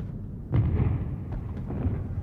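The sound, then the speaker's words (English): A Canadian artillery barrage of guns firing for three minutes before lifting 100 yards, including 150 of Brutinel's machine guns sweeping a zone 400 yards ahead: a steady, heavy low rumble broken by several sharper booms at irregular intervals, loud throughout with no voices. “The guns fired for 3 minutes, then lifted 100 yards.”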